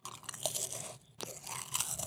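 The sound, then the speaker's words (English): Someone chews a mouthful of crisp Ritz crackers spread with Nutella, a steady stream of dry, crackly crunches that pause briefly about halfway through, then resume with no talking. “You know that Nutella on a Ritz cracker is pretty good.”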